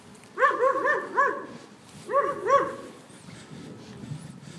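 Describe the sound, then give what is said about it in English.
A dog lets out two quick bursts of short, high-pitched yipping barks, a few yelps in each, separated by a brief pause, while spinning around in circles; then it goes quiet. “The dog is spinning around in circles.”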